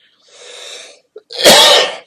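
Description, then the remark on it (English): A single loud sneeze: a drawn-out, breathy intake builds up, a tiny catch, then an explosive, hissing burst that lasts about half a second. No talking. “The minute I start doing this, all of a sudden I've got a cough, burp, fart, boogers.”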